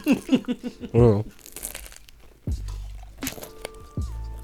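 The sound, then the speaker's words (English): Crisp crunching as someone bites into food, a few sharp crackly bursts, with a short voiced murmur and some low steady tones in the background. “Nice crunch”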